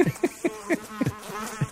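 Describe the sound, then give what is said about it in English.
A mosquito buzzes in short, pulsing bursts, its whine rising and dipping in a quick, uneven rhythm with no voices present. “Look, man, it's getting hot. Mosquitoes are coming out, man.”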